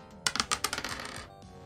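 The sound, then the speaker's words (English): Dice rolling on a table, landing on a natural 1: a quick rattle of sharp, bright clicks that tumble and bounce for about a second, then settle and fade. No one speaks. “Yeah, unfortunately, you just rolled a nat 1.”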